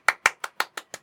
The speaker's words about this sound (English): You're going to want to hold that clapping.